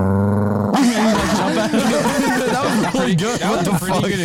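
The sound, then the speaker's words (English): A person makes a rough, gravelly growling noise with their voice, imitating an angry dog, sustained for a few seconds after a brief tonal start. “That was a pretty good impression.”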